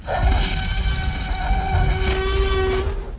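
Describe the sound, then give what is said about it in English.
The T-Rex roar sound effect from the original Jurassic Park movie, made from a combination of several animals: one loud, sustained bellow lasting about three seconds, with a harsh, horn-like tonal wail over a deep rumbling growl, no voices. “That was the T-Rex roar from the original Jurassic Park movie.”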